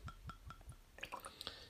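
A quiet pour of whiskey from a bottle into a glass: soft rhythmic glugs from the bottle, then bright trickling and bubbling plinks as the glass fills. No one speaks.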